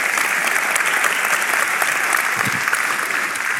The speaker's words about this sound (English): Amen. Let's give the Lord another round of applause if we can do that.